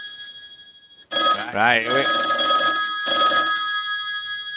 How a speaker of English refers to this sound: See, I have this clip on YouTube, and the best thing about it is it's animated, so it only just sounds like a phone's ringing. It looks like a phone's ringing.